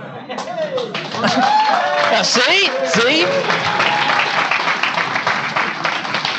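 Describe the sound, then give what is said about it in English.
A large crowd of thousands of people breaks into loud, sustained applause and cheering after a line about more people looking into the Austrian theory of the business cycle. It swells after a brief spoken word and keeps roaring steadily, with shouting voices mixed into the dense clapping. “The place, thousands and thousands of people, the place erupted in cheers.”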